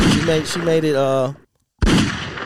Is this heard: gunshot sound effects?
yes